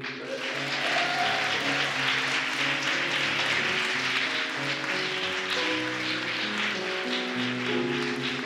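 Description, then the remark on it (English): An audience applauds Joe Dunthorne steadily for the whole stretch, a dense, sustained clapping wash, while a tuneful musical accompaniment plays underneath. No one speaks. “Ladies and gentlemen, please keep that applause going for Joe Dunthorne.”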